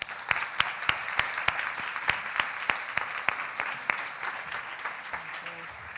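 An audience claps steadily, a dense wash of many hands with a few sharper individual claps cutting through at a quick, irregular rhythm, sustained at moderate loudness with no voices.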